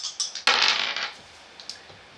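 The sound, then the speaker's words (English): Dice are rolled onto a table: a bright clattering rattle of small hard objects tumbling onto a hard surface, with a loud burst early on that settles into a few lighter ticks and taps. “Okay, I guess the dice want it too because that's a 33.”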